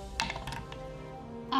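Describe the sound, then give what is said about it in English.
A twenty-sided die (d20), rolled for a spell attack, rattles and clatters in a quick burst of small hard clicks, pauses, then gives a final louder clack as it settles. No one speaks. “Actually, no, I will roll a different dice for Miri. That's a d20.”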